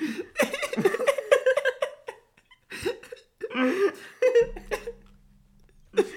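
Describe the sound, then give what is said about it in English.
Loud bursts of breathy sobbing from a person crying, not laughing, broken by sharp hiccups, with a couple of short pauses and a low steady hum near the end. “I'm crying. I'm not laughing. I'm crying. I've got the hiccups.”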